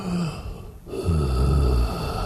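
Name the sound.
deep breathing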